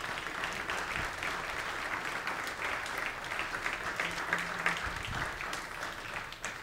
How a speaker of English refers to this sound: And so y'all give them a round of applause, please.